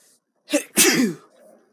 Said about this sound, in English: Oh, I'm about to sneeze.